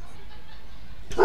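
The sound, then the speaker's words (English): A single sharp, loud dog bark bursts out at the very end after a stretch of quiet room tone. “Alas, the cue from the dog.”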